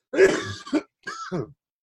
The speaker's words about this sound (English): Anyway, what were we talking about? I just lost it after that cough. I'm sorry. I'm sick.